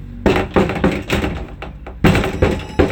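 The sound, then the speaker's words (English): Loud, insistent banging on a hollow plastic porta potty door: a quick series of heavy thumps, a brief pause, then another burst of knocks, resonant with no talking. “People will bang on the door who were non-existent only moments before.”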